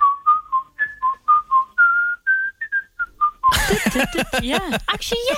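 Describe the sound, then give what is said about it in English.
Someone whistles a quick, lively Irish jig-style tune in short bouncing notes for about three seconds, then loud voices break in talking over each other. “You snuck a little Irish jig or reel into the latest single.”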